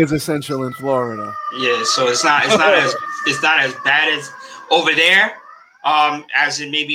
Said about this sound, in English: If you hear the sound in the background, that's the fire trucks. I wish they would have shortcuts to get around, because hearing them coming through here, very annoying.